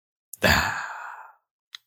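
A single long, breathy exhale like a yawn or sigh, rising suddenly and fading over about a second, with a faint click before it and another after.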